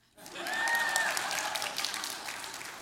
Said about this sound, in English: Really got, you know what? The first service, I got an applause.